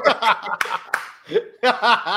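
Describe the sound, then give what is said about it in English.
A short crowd cheering sound effect: bursts of excited, laughing voices with a couple of sharp claps in the middle, loud, ending in a fresh swell of cheers. “I went back to my crow sound effects. The crowd sound effect.”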